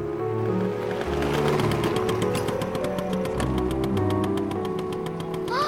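A motor scooter arriving at a school buzzes and putters steadily for several seconds, its rapid chugging pulses holding firm while the pitch wavers up and down, with no voices.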